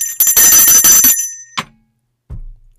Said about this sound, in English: Hello? It's my bell.